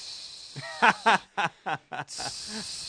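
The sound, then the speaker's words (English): Air hisses out of a deflating football, played as a joke alarm-clock sound about Deflategate, broken by about five short, squeaky pitched bursts before settling into a steady, moderately loud hiss; no one speaks. “That's a deflated football.”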